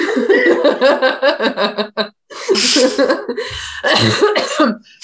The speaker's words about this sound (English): That was like an old lady cough. I love a laugh that devolves into a cough. That it makes me laugh so hard for some reason.